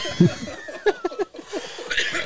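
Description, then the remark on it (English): A few short, harsh coughs burst out in an uneven cluster, mixed with breathy snickering, then fade into a thin hiss. “You're already right, coughing.”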